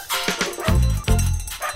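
A dog barks a few times in quick succession, with two stronger, deeper barks standing out. The sound is fairly loud, with no talking.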